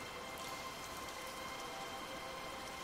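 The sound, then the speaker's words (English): Steady artificial rain from a rain machine falls continuously, a soft, even hiss of countless drops with faint patters on a surface, fairly quiet and unbroken, with no voices. “Is it still raining?”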